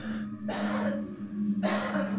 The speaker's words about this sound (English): said he was gonna cough, and that was a cough